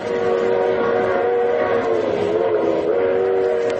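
A train runs at 60 miles an hour on open track at night, passing through a sleeping village: a loud, unbroken roar and rumble with a steady droning tone riding over it for the whole stretch, no voices.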